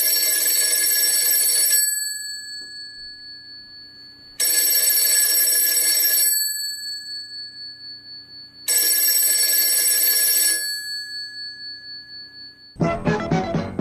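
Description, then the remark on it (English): A telephone rings three times in long, loud bursts with pauses between, each ring a rapid metallic bell trill, followed by a brief burst of a voice at the end. “Little did I know it was Joe Biden when I hear a ringing phone.”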